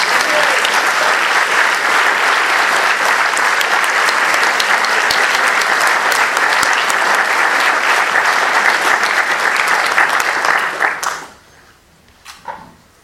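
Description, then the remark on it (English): A large audience applauds loudly and steadily as a host and co-directors are welcomed to the stage after a film screening, a dense wash of many hands clapping for about eleven seconds before it dies away, leaving a few scattered claps and faint room noise. “Keep clapping till we get the chairs, if you like.”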